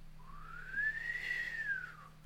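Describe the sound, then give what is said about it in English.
A voice imitates an electric bike's whine with one smooth whistled tone that climbs in pitch, holds, then slides back down, lasting about two seconds with no talking over it. “But there's something really off-putting about a bike that goes.”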